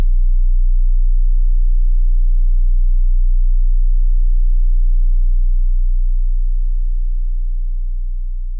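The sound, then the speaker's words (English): A steady, very low-pitched pure tone at a beta brainwave frequency (14 to 30 hertz) hums without a break, loud and unwavering, then softens slightly over the final seconds. No voices are present. “Beta, 14 to 30 hertz. Beta is a higher frequency brainwave and helps in keeping your attention focused, analytical thinking and solving problems, stimulating energy and action, and high-level cognition.”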